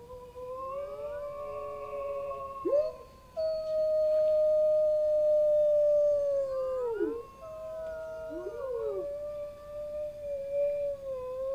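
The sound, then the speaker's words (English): Long, drawn-out imitated wolf howls rise and fall in pitch, with several voices overlapping into a sustained chorus that carries clearly for about eleven seconds, with no talking. “They are most famous for the howling. Can you howl like a wolf?”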